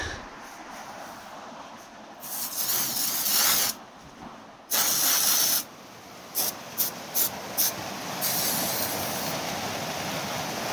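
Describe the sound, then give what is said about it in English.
Hissing bursts of a Gold Bond aerosol foot powder spray being applied to wet, waterlogged feet on a trail: two longer sprays followed by several quick short puffs, then a steadier spray, with faint outdoor background between them. “The trail's just been either a river or a pool, but I carry this Gold Bond spray with me that works wonders on my feet. So here's me putting some on.”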